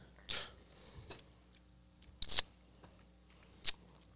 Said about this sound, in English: Why am I not? Oh, I didn't even see this one. I'm over here chewing on the same freaking lemon.